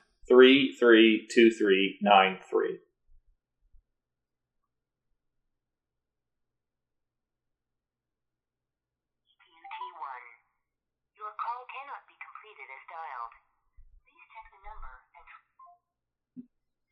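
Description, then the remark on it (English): A rapid run of electronic cell phone keypad beeps as the number 332393 is dialed with phone sounds turned on to play a TV theme tune, sounds clearly at the start, then after a pause a fainter, scattered series of similar tones follows. “dial in 332393, you get the theme to Mighty Morphin. Let's try that.”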